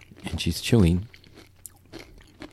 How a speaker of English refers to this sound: No, I'll talk. You eat. And there it goes. And she's chewing.